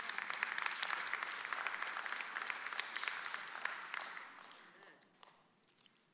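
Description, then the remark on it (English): An audience breaks into steady applause, dense clapping that holds strong for about four seconds before thinning out and fading to scattered claps. “You can clap about that.”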